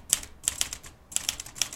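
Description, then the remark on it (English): Sharp, crisp clacks of a manual typewriter at Gramercy Typewriter Company, a typewriter repair and sales shop in Chelsea, New York City, keys struck in quick bursts of two or three with brief pauses between, alone with no voices. “Gramercy Typewriter Company is New York City's one-stop shop for typewriter repairs and purchases.”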